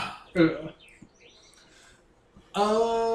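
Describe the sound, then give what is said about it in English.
A person imitates a sugar glider's crabbing call: a short harsh, buzzy burst, a quiet pause, then a longer sustained rasping chatter, loud. “No, they make that sound. It's called crabbing.”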